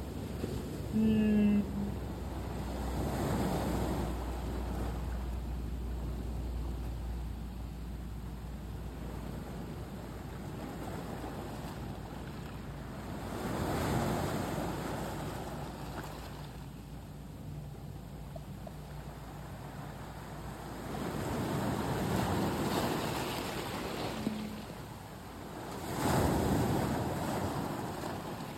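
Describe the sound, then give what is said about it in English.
Ocean waves wash in and out at the water's edge in Sitka on a November day, in slow, rolling surges, each swell building to a broad roar before receding, with a steady breezy hiss underneath and no voices. “Feel free to take a moment to take some deep breaths and just allow the sound bath of this ocean.”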